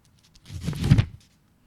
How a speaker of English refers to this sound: Paper. You're flipping through paper. Close. Oh, post-it notes. Yep.